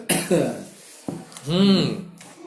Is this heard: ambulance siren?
no